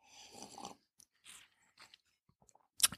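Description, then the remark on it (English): Quiet mouth sounds of someone sipping whiskey from a glass: a soft slurp, a few wet smacks and swallows with pauses between, ending in a sharp little click, with no talking. “Let me take a sip here.”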